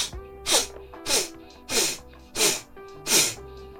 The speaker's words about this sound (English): Inhale. Fill up your belly with air. Ready? Just sniff.